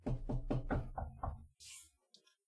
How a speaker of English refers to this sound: fingers crossed, knock on my desk. I've got some wood. Yeah, my desk should be wood.